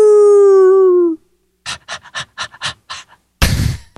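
A wolf lets out one long, steady howl that sags slightly in pitch, then falls into quick rhythmic panting before a loud, rough burst of noise cuts in at the end.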